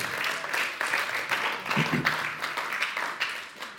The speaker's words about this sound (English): Thank you, Tim. Give Tim a round of applause there.